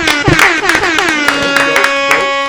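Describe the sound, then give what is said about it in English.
Several sharp hand claps land at an uneven, brisk pace over a steady, ringing musical tone that holds throughout, then fades out at the end. “All right, guys, clap it up.”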